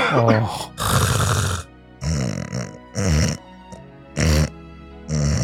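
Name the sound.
imitated loud snoring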